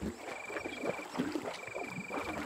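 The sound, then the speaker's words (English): A small rowboat with three people sitting in it drifts on water, with a steady wash of sloshing and splashing. A thin, high, continuous whine runs faintly in the background. “Just three people sitting in a boat.”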